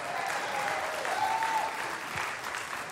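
An audience applauds steadily for three seconds, a dense, even wash of many hands clapping at once, with a faint whistle or cheer rising briefly above the clatter.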